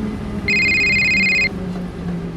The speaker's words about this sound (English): What is that? What? It's nothing. It's just someone's cell phone or something.